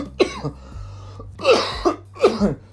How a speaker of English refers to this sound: Goddamn, I can't stop coughing.